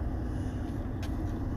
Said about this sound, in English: Always on the move, literally. Fucking driving around in my big Ram 5.7 liter hemispheric engine.